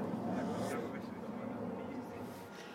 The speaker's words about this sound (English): I still have fear of the sound of planes, of just a plane like this, civilian plane. But still, even after 2 years from now, I still have fear.